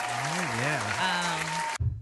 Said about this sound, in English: So I'm applauding myself for that strong-willed situation.